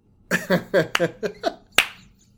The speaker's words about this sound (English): Sorry, I don't know how those slow claps will translate to the recording, but slow clap.